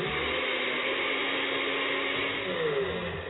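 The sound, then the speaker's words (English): A blender runs continuously, its motor whirring loudly and steadily as it churns beans and soy milk into a liquid mixture, with a slight shift in pitch near the end and no voices. “So we're going to put them in the blender first.”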